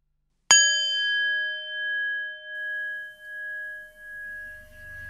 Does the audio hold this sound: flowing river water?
no